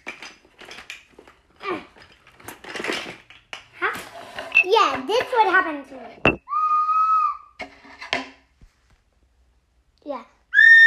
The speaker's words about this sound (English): No. This whistle isn't working. Weird. The police will blow a whistle at you.